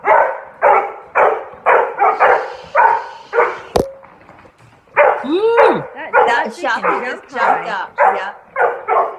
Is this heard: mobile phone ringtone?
no